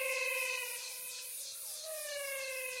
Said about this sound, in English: There's a lot of wildlife, especially at night, as you can hear. They sound like something from the planet Venus. I call them the singing frogs of the Pantanal. I think they're frogs. They could be toads.